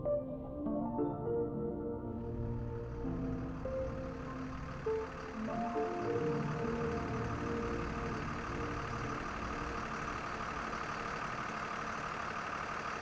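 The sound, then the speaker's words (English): A large bus engine idles with a low, steady rumble, then revs up into a louder, broader roar as the bus pulls away, its rubber tires spitting out clouds of dust, and keeps driving, continuous throughout. “The engine started, and the bus's rubber tires spit out clouds of dust behind them.”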